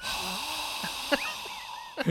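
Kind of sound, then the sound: vocal imitation, voice imitating a fart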